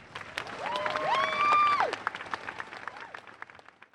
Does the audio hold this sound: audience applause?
yes